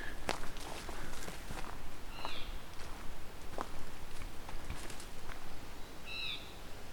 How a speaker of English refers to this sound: This sounds like a blue jay.